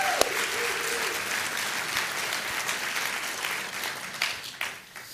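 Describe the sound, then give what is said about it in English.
A church audience claps steadily during a morning worship service as a greeting for Pastor Dan, a dense wash of overlapping hand claps at a fairly loud, even level that thins out and fades toward the end. “Actually, let's just clap for Dan so he hears it.”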